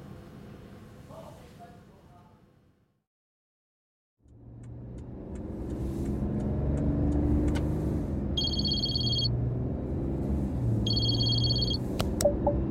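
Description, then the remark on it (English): After a short silence, a car engine starts up with a deep, loud rumble that holds steady to the end, broken by two brief bursts of high electronic beeping. “I will call you from the car.”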